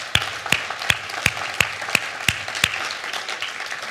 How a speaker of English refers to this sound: And so right now, we want to give a round of applause and appreciation to all those who are veterans or are family members of veterans, because you guys are special. And so let's give you a round of applause for that.